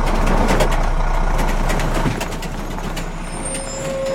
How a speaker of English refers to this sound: Then, a couple of nights per week, a tractor would drive by pulling a trailer behind it.